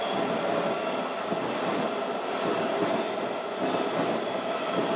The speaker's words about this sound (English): It's the fourth train. I haven't been keeping count. I hope you have.